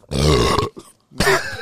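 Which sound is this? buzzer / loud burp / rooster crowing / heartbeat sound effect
loud burp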